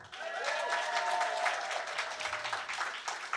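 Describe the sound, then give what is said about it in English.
A live audience applauds warmly at a live event, dense overlapping clapping continuing steadily for a few seconds, with faint cheers mixed in and no one speaking. “I should make it clear, you don't have to applaud only when I tell you to. You can spontaneously applaud as well.”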